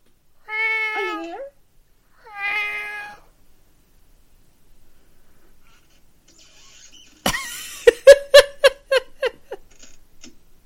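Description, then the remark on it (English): A cat meows twice, clear, with a short pause between the calls, then a quiet gap before a loud burst of rapid, rhythmic mechanical clatter like an engine cranking. “What happened to the kitty? Oh, there she is.”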